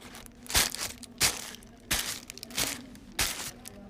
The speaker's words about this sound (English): To create this effect, I simply just took a piece of wrapping paper and I crinkled it in my hand at a beat of a simple walking pace.